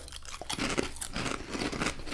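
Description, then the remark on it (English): Loud crunching as someone bites into ridged Ruffles potato chips and chews, with dense, rapid crackles filling the whole stretch and no talking. “Very crunchy.”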